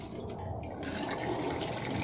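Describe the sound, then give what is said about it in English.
Acid stop bath pours steadily into a film developing tank during film developing, a continuous splashing, gurgling flow that grows fuller and brighter over about two seconds, with no talking. “And I'm going to add my stop.”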